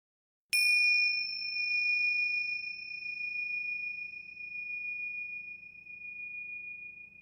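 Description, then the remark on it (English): A single bell chime used as a transition on the show Behind the Dreams strikes once, bright and clear, then rings out in a long, shimmering sustain that slowly fades over several seconds. No one speaks. “Stay with us, because after the bell, we'll be taking you behind the dreams.”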